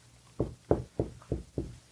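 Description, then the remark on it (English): Five quick, solid knocks on a hard surface in a steady rhythm, fairly loud, with no talking. “What the fuck did you knock on that for?”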